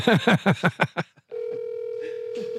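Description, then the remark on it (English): A quick run of six chirpy electronic beeps as a phone calls someone's mother, then a steady, unbroken telephone tone hums on as the outgoing call goes unanswered. “She's not going to answer you.”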